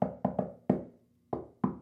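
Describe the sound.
A resonant knocking on a house door around 1 o'clock in the afternoon, tapped out in the shave-and-a-haircut rhythm: a quick run of four knocks, a short pause, then two final knocks, with no voices.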